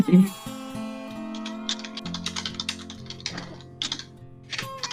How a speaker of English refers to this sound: Typing in the dark.